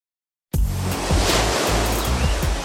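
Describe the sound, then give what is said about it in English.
Steady, loud roar of surf at the beach fills the scene after a moment of silence, a dense continuous wash of breaking waves, with no voices. “Well, we made it to the beach.”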